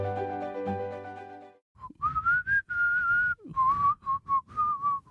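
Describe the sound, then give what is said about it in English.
A person whistles a bright, clear melody, a theme song, with phrases of sustained and bending notes and a few short breaks, following a brief burst of harmonic music at the start. “We should just have you whistling the theme song instead of the actual music.”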